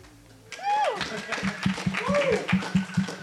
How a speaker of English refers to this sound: Pause for applause.